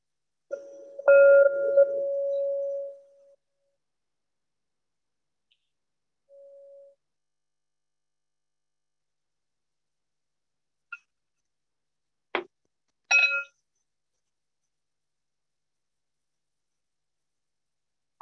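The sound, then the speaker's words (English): A meditation bell, the first of three in a morning awareness practice, is struck once and rings out for a couple of seconds before fading, followed by a faint brief tone and a few scattered soft clicks in otherwise near silence. “You hear three bells. One just a moment.”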